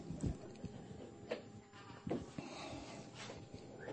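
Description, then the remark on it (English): A stubborn goat, being made by a man to back into a spot, bleats several times in short, wavering bursts spaced a second or so apart, fairly quiet and set against steady outdoor background noise with no talking. “come on, Mr. Goat, cooperate. This goat's going to back into the wilderness here, you see.”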